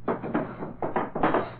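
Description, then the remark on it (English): Desk drawers in a study are slammed shut several times in quick succession to make noise, a fairly loud series of wooden bangs and scraping rattles with no one talking. “Now to make a little noise by slamming the desk drawers a bit.”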